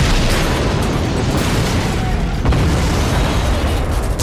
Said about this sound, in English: In a split second, four other massive explosions encompassed the body of the gunboat.